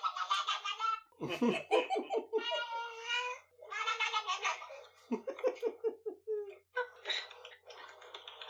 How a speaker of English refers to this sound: Excellent. I don't understand how a cat makes that noise. It's a hunting noise.